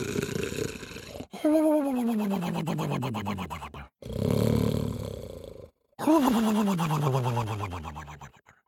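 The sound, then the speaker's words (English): A voice imitates a giant's snoring: four long, loud, rumbling breaths with deep groaning tones that slide downward, separated by brief pauses. “He lay there with his back against the tree, with his great big belly rising and falling as he snored.”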